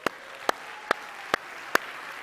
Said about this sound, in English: Can we give another round of applause to our kids?